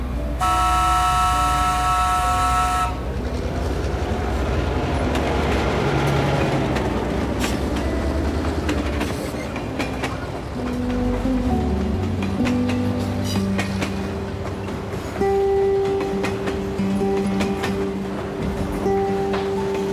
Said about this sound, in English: As we head in from the mainland, we can see a beautiful landscape along the shores of Sodor. The train's working hard, each doing their part.